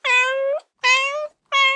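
Three clear cat meows in quick succession, each about half a second long with a steady, slightly rising pitch, separated by short silences and with no talking.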